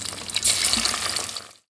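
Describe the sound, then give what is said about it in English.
Samosas sizzle as a woman finishes frying them in hot oil, a steady crackling hiss lasting under two seconds before cutting off abruptly. No voices are heard. “Ibrahim's mom called out as she finished frying her samosas”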